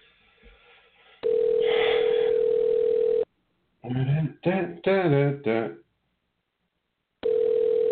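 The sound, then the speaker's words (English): A loud, steady telephone dial tone hums at one constant pitch for about two seconds while a call is dialed live on the Fantasy Jester Show. It cuts out for a short burst of voice-like sound, then comes back on. “we're going to go ahead and try and bring Wonder Mike on here live”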